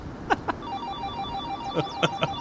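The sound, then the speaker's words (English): A phone call's electronic ringing tone pulses steadily at moderate-low volume as a call is placed, with a few sharp clicks or taps scattered over it and no one speaking. “you turn your volume up, And I'm going to hit the call button, okay?”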